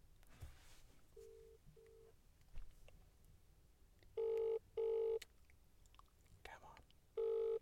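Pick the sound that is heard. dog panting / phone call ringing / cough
phone call ringing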